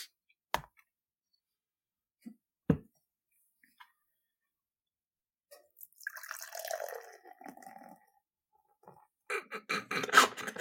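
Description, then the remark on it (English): Beer poured into a glass: a few sharp clinks and drips, then a steady gurgling pour, then a louder, fizzy splashing rush at the end. No one speaks. “I was pouring out a beer, but I can tell you that I made the rookie mistake of pouring it straight in”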